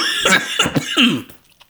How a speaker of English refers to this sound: Guys, I so deeply apologize for my voice and my constant coughing. I'm just extremely sick, and I'm still here doing the shows because, you know, the show has to go on.